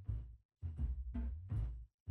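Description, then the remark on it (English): Percussion in a played music track, in short, booming bursts with a heavy low thump, several hits in an uneven rhythm separated by brief silences. No one speaks. “Some percussion sounds.”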